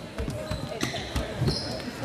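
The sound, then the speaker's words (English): A basketball being dribbled on a court during a Winfield Mount Union Wolves game, several sharp bounces at an uneven pace, with shoe squeaks and a murmur of crowd voices in the background. “Dribbling.”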